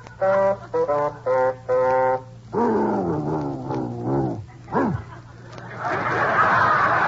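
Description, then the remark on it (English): A few short bassoon notes play, then a dog answers with long, wavering howls that rise and fall, ending in a sliding yelp and a rush of noise. Fairly loud. “Baldy, you're singing.”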